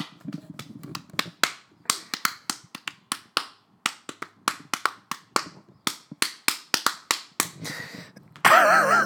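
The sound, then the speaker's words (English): A hand slaps a thigh over and over in a quick, bouncy rhythm as a theme song in place of music, dozens of sharp, dry smacks lasting about eight seconds before a voice cuts in at the very end. “I can't afford music, so I just slapped my thigh.”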